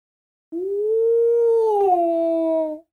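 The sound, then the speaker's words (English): A person imitates a deep, sustained howl, one long steady tone that rises slightly, holds for about two seconds, then dips near the end before cutting off. Fairly loud, with no other sounds. “We get a nice howl bellowing out.”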